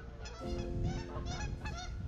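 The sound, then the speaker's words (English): Several geese honk loudly and close by, their harsh, repeated calls overlapping in a steady clamor with no break, over a low rumble of background noise. “Those geese are getting close.”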